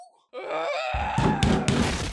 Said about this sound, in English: You broke the door!